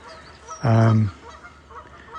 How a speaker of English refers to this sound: The geese are wandering around. They're doing a bit of grazing near the thing here. They got disturbed by the alpacas, who are heading out.